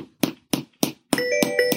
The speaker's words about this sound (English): Some spam is coming. Spam phone call.